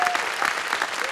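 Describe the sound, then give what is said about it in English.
A church audience at Heart Church claps steadily, a dense, even wash of many hands with no pauses, bright and crackling throughout. “Come on, give it up”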